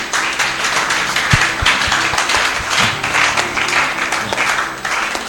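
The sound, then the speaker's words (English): A crowd stands and claps steadily during a sermon, a dense, continuous wash of many hands with no pauses, scattered sharper individual claps standing out, fairly loud throughout with no talking. “It's a good thing to stand and clap.”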